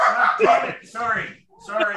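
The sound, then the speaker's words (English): Dogs bark in three short, loud bursts, a brief pause between each, with no talking underneath. “He started snapping because the dogs were barking.”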